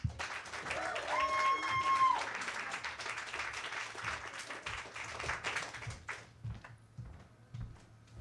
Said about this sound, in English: Yeah, you can applaud for her. Don't be shy.